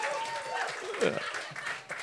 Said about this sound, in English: Yeah, give him a clap for that.